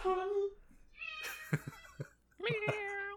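A cat meows three times, each call drawn out and tonal, separated by short pauses, with a few soft clicks and thumps mixed in between.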